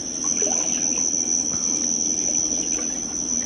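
Nighttime outdoor ambience at a watering hole, with a steady, shrill chorus of insects droning continuously over soft, running and lapping water. No one speaks.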